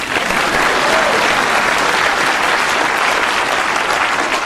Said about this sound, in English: Welcome back to Politinkering. Yay. Please clap.